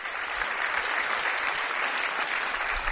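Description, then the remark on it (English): A crowd claps steadily for several seconds, a dense, continuous patter of many hands at a moderate level with no voices on top. “Some of you, you can applaud that, yeah.”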